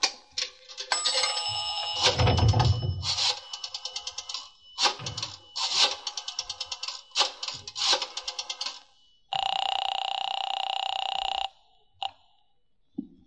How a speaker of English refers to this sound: When the cab drove away, I then went into the drugstore to the phone booth. I looked up the Roxmore Apartments in the book and dialed the number.